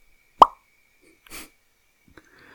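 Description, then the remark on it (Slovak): A gravitational wave signal from black holes plunging into each other, taken from the stretching of the detector arms and turned into sound: a single, very short chirp like a soft plop or smack, lasting a fraction of a second. Faint rustling and a small click follow, with no talking. “Čiže ty vieš zobrať gravitačnú vlnu, zobrať ten signál z toho naťahovania ramien a prerobiť to na zvukový signál.”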